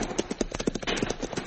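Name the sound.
horse hooves galloping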